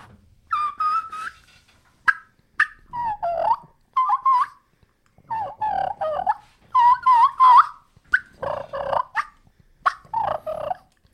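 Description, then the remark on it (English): A wild turkey hen gives a kiki call mixed with soft rolling purrs: about a dozen short, high whistled notes and trills in quick bursts, clear, with no talking. “Now, a lot of times you'll also hear a kiki with a purr, right?”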